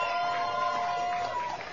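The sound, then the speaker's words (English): A steady wash of crowd noise, clapping and cheering from an audience with a few sustained whoops or whistles riding on top, filling the whole moment without a break. “So let's hear a big round of applause”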